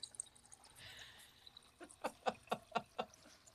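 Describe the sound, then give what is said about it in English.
Water glugs as it is poured into a glass in the morning after waking: a brief soft trickle, then about six quick, evenly spaced gurgles, fairly quiet, with no one speaking. “So I'll get some water and be like...”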